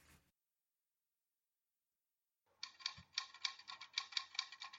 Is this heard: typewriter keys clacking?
yes